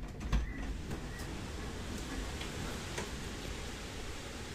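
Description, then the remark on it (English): Strong wind roars steadily outside the house, a broad rushing rumble with a heavy low end that holds for several seconds, broken by a few faint knocks and clicks. No one speaks. “Well, the wind's really picked up. It's gonna blow the whole house down.”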